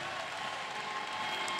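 An audience claps together in a steady, dense burst of applause that fills the room at an even loudness, with no voices rising above it.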